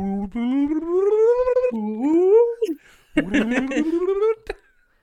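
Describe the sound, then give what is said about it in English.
A voice imitates a slide whistle with a few rising, swooping glides, then a wavering, breathier run that sounds half laughed, loud and with no other sounds behind it. “I believe that's called a slide whistle.”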